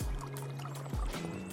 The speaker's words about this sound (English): But yeah, I'm in the forest and it's snowing, by the way. You could probably hear my feet patter on the ground. Listen to the water flow underneath us.